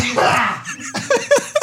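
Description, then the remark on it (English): A sudden, forceful sneeze bursts out, followed by a few short, breathy chuckles and bits of laughter. “I'm going to sneeze.”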